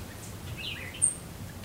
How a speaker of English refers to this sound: As I drive west towards the national park, the electricity of Miami dwindles and the skyscrapers fade away. The air softens as the sounds emerging from the open windows change from beeping horns to birds.